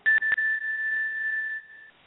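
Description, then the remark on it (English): A Jing Kong bell is struck to clear the auras in the room, opening with two quick metallic strikes before a single pure, high ringing tone sustains steadily and slowly fades out over about two seconds. “No, it's a Jing Kong.”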